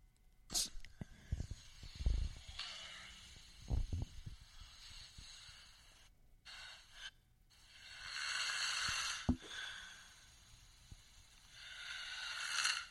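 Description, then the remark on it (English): A man snoring, captured in a lo-fi phone recording: rough, hissy breaths swell and fade in long waves, broken by a few sharp snorts and clicks, with no talking. “You have multiple recordings on your phone of your boyfriend snoring.”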